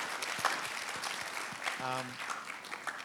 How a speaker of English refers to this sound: Thank you very much, team, this morning. We really went somewhere special with that, and they're doing an excellent job. Yes, you can give them a round of applause. They're awesome.